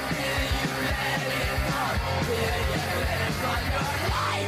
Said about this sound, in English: After hours of shooting and facing a line of troops, the crowd is still here. They're shouting, "Stop the killing and down with the government."